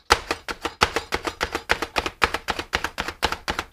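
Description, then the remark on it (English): A spring-loaded food chopper pumps rapidly through vegetables, roughly twenty sharp clacking strikes in a steady, fast rhythm, each with a crisp snap and springy rebound. No talking. “It's like one of those spring-loaded chopper things.”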